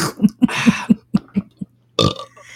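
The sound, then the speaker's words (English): A loud run of short, croaky burps in quick rhythm, about seven in a row, then a brief silence and one final rougher belch. No talking. “If only I could burp.”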